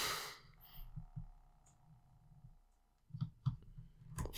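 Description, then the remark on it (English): A handful of soft, sharp clicks at irregular intervals, mostly bunched toward the end, over a quiet background of low hum and faint breathy noise. No one speaks. “The thing that picks up is you clicking.”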